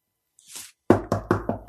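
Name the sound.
knocking on a door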